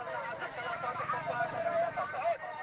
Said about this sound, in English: What you can hear is the bustling hubbub of traffic, street vendors, everyday life in the commercial hub of the port city of Aden, Yemen.